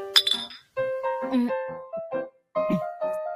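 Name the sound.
glasses clinking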